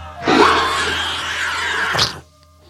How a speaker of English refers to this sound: As you're looking up, you hear this in the distance. And screams. In the distance.